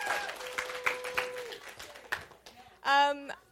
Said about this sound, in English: Can we give one more round of applause for everyone who was up here? That was so great.